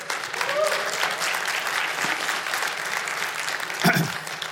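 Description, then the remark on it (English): An audience claps and cheers for people being baptized, a dense, steady wash of applause with a few voices whooping over it and one sharper burst near the end. “If you want to cheer, you're welcome to.”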